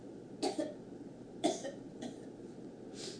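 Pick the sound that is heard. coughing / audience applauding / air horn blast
coughing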